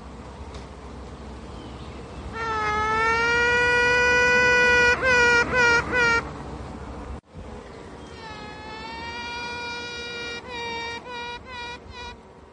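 A queen bee pipes (sings) over a steady hive hum: a long sustained high tooting note followed by a run of short pulsed toots, then the pattern repeats a second time, clear.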